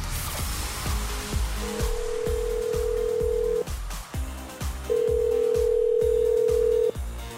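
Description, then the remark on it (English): A phone call to a contest winner rings out with two long, steady ringback tones separated by a pause, heard over a quiet rhythmic music bed with a regular low beat. No one speaks. “Okay, well, you foiled our whole plan of pretending to be telemarketers.”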